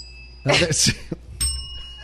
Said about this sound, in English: It's a Hollywood Tower hotel bell.